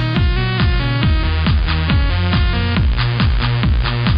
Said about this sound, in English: And new music for you. Never heard this song before, so I'm just gonna play it.